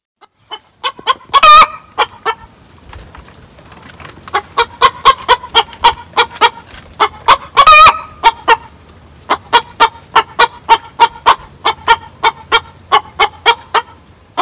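Hens cackle the egg song: rapid, rhythmic clucks in bursts, punctuated twice by a loud, drawn-out squawk, continuing steadily throughout with no talking.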